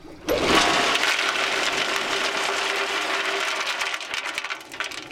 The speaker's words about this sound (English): Okay, this is a bentonite trailer, okay? Bentonite is a kind of super absorbent clay that gets poured down the well to seal off the gas producing formations. Listen for the bentonite to hit the water at the bottom and lift up more.